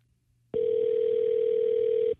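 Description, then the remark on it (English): A telephone ringing tone of a call to Bolt Brady's office sounds once as a single steady, mid-pitched burst lasting about a second and a half, loud and unbroken, with no voices over it. “I am out of town, but we're going to give our guy a buzz here and see if he's available, because we got to chit some betting odds, right?”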